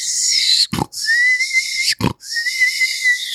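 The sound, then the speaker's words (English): A person imitates a creature's shrill, wheezing telltale death whistle, made after it was clubbed in the head: two long, high, strained whistles, each broken by a short, rough, snorting gasp, loud. “It made its telltale death whistle.”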